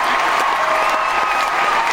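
A steady burst of applause from a crowd, dense overlapping clapping that stays loud and even for the full two seconds, with no one speaking over it.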